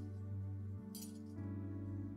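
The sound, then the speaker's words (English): A brief, bright metallic jingle of keys lasting under half a second, set against a steady low electrical hum that runs throughout. No one speaks. “This key, the bigger key, Lord, is a key to finances.”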